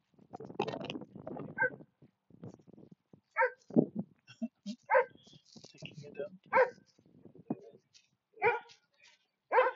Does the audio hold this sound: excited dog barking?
yes